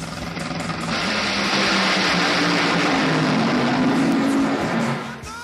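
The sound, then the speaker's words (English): A dragster roars loudly down the drag strip at about 330 miles an hour, a dense, sustained engine blast with rising pitch that builds after the first second and holds before fading slightly at the end. “Hey, you know, we just heard that dragster that...”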